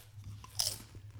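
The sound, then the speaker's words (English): A single sharp, close crunch as someone bites into crunchy crisps, followed by brief chewing, with a low steady hum in the background and no talking. “I'm going to try and chew not into the microphone, but yeah, anyway.”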